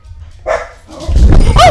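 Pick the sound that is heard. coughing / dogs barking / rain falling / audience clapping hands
dogs barking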